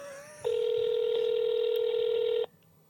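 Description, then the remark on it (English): An international telephone ringing tone, heard when calling a phone that is abroad: one loud, unbroken electronic beep that holds steady for about two seconds before cutting off, with only faint background noise around it. “That's an abroad phone.”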